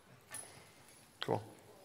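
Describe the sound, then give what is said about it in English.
A dog named Scout whimpers once in a short, nasal whine, preceded by a faint soft rustle, against an otherwise quiet background with no talking. “Is that my dog? Knock it off, Scout.”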